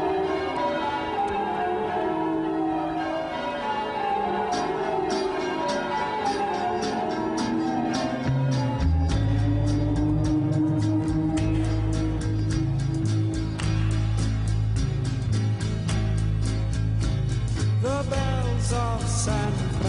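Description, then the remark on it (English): A festive instrumental Christmas tune from a Christmas album compilation, performed at Carnegie Hall, with ringing bells chiming in steady rhythm over sustained melodic tones; a heavy bass line joins partway through, filling out the music, which plays loud and without voices. “Okay, so I'm going to play a tune here, another one off of one of these Christmas album compilations.”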